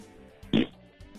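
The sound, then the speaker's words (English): A single short, blatting fart sound, made by a caller over the phone, bursts out loudly for a fraction of a second, thin and tinny through the phone line, with faint background noise before and after. “That's an ass fart.”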